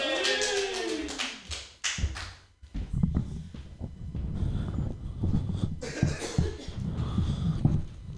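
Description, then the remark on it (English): An audience at a comedy show applauds steadily for several seconds as the next comedian is brought on, a dense, continuous patter of many hands, with a rising whistle or cheer at the start and a brief dip before the clapping swells again. “Give it up for your next comic,”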